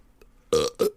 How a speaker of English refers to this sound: excuse me, guys. Not a problem. It's not a political discussion without some burps. We have to take that out.